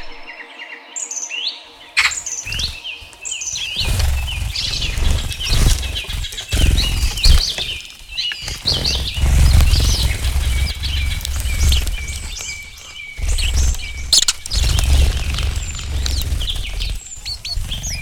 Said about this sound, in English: That's the sounds of birds fighting. Captured on a binaural mic, a 360 degree mic, if you like, on a field recording trip recently. Worth listening to with headphones, actually. It's a bit like if you were there.